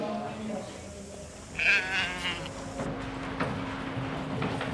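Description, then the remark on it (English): A sheep lets out a loud, wavering bleat in the sheepyards beside the fleece judging room at a three-day shearing competition, where heavily fleeced sheep unloaded from trucks wait their turn, with fainter bleats following, all over a steady low hum and a murmur of background voices. “Just beyond the fleece judging room are the sheepyards. Trucks arrive unloading heavily fleeced animals who wait their turn to head on stage.”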